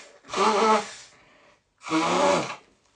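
Someone blows their nose twice, each a loud, rough, honking blast lasting under a second, separated by a short pause.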